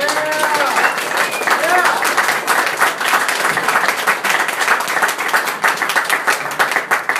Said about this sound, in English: So our first reader of the night, please give a big round of applause again for Patricia Spears Jones.